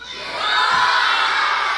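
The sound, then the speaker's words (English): A crowd of people, many sounding like children, does its best lion roar on request, a loud, sustained wall of growling shouts that swells quickly and holds steady for nearly two seconds. “Can y'all do a lion roar? Your best lion roar?”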